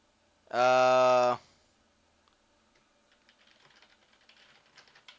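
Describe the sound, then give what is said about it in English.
A loud, sustained harmonic tone sounds briefly, then after a pause comes faint, rapid clicking of keyboard typing in the background, irregular and soft. “I hate to keep derailed and you hear me typing in the background.”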